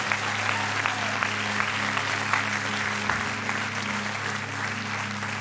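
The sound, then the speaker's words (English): An audience claps steadily for nine people about to be baptized, a dense wash of many hands at a constant, fairly loud level for the whole stretch, with a low hum running underneath. “Will you give the nine people that are here ready to be baptized, will you give them a rounding round of applause, please, even as they get going?”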